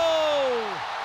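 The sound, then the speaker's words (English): A loud, dense sellout crowd roar at Petco stadium cheers Fernando Tatis Jr.'s two-run home run to deep center in the 8th inning, sustained and steady, with a tone that slides downward in pitch over the first second before the roar carries on alone. “And a sellout crowd on their feet at Petco as Tatis stopped midway to first, flexed for his dugout, and rounds the bases.”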